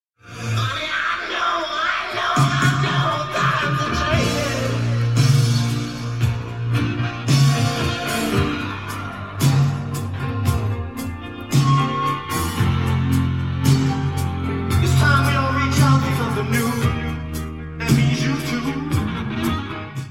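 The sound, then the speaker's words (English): Loud, dense rock music with a singer screaming and wailing at the end of the song over driving guitars and drums, sustained and intense throughout the passage with no spoken talk. “In doing so, I fell in love with the classic, mostly for its guitar solo and screaming at the end, but also for these lines.”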